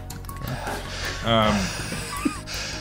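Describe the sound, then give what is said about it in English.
Heavy, congested breathing into a microphone from a person with a blocked nose, with a loud raspy, wheezing gasp in the middle and a short snort near the end, over a steady noisy background. “stop breathing in the microphone like that”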